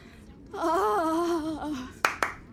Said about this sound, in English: Who is that clapping? Leo's eunuch.